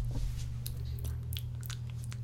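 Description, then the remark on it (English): Close-up chewing and wet mouth noises, with a few short crisp smacks scattered over about two seconds against a steady low background hum; no one speaks. “Slurp that up.”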